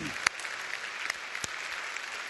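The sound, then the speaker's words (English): Steady audience applause at Rock Harbor in appreciation of those who lead and serve there, a dense wash of many hands clapping at moderate loudness, with a few sharper individual claps standing out from the crowd. “But can we just give a round of applause of appreciation for those who lead and serve at Rock Harbor?”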